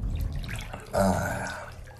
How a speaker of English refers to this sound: I'm out of town in a hotel, taking a bath.